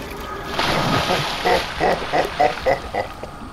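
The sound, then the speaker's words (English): Water sloshes and splashes as someone swims, first as a steady wash, then as a run of six or so rhythmic splashes of swimming strokes, moderately loud with no voices. “Another fine day, swimming in my sacred water.”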